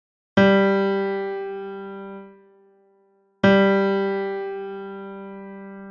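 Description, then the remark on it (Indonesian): A single musical note G is played twice, each a bright, steady tone rich in overtones that rings out and slowly fades. Roughly three seconds separate the two, with no voices. “Nah, jika saudara mempunyai nada yang sempurna, or perfect pitch, we call it, saudara pasti tahu itu adalah nota G, betul?”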